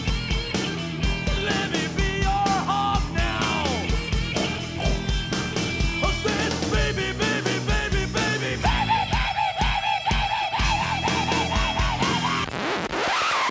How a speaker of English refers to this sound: … wrote, "…," which is amazing. And we're going to play it right here.